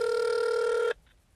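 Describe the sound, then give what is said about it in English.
A steady electronic ringing tone of an outgoing phone call sounds loudly for about a second with a sharp harmonic buzz, then cuts off abruptly into near silence. “Probably will not answer a phone.”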